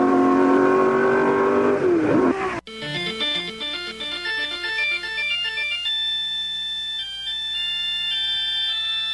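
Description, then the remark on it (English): A race car engine roars loudly, its pitch climbing and dropping as the driver downshifts from fourth to third into a decreasing-radius corner, then rolls out and accelerates at full throttle, before cutting abruptly to a bright, chiming electronic jingle. “Come down 4th, 3rd, and into another decreasing radius. Roll it out and stand on the gas.”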